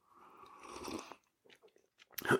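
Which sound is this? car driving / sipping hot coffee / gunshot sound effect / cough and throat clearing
sipping hot coffee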